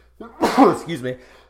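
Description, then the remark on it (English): A single loud sneeze brought on by coffee: a short voiced intake, then a sharp explosive burst, trailing off into a brief vocal tail before quiet returns. “Oh, I got the coffee sneezes.”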